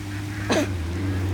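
A single short, harsh duck squawk cuts through a steady low background hum, brief, with no one talking.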